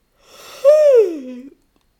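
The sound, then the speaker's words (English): One long yawn while reaching up on one side to open space between the ribs during a breathing exercise: a breathy intake swells into a voiced groan that slides steadily downward in pitch and fades out after about a second, with no talking around it. “So we're going to just get into our breath for a second, finding some space between your ribs by reaching up on one side and yawning.”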